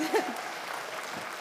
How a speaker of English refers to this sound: So can we give them a round of applause, please?